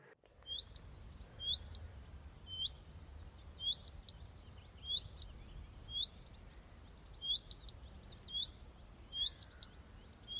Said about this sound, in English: And at the very end, this little redstart popped into a hawthorn tree, which was fully in flower, and this bright red-breasted bird sat in the tree and followed me and made the following little noise.